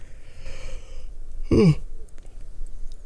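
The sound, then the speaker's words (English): A single short, breathy yawn from one person, a quick airy rush of voice that rises and fades within a moment, over a quiet background. “My heterochromia eyes needed to blink in order for me to complete my yawn.”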